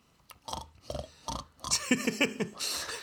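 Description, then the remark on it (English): Pigs grunt and oink in a press room as press secretaries try to push them out, starting with three short separate snorts, then a busier, overlapping stretch of squeals and grunts that grows louder toward the end. “Excuse me, do you mind explaining why there's pigs behind your dress in camo?”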